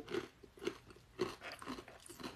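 Crunchy chewing on a hummus snack at night: a steady series of crisp, crackly bites and munches, repeating roughly every half second at a low level with no talking.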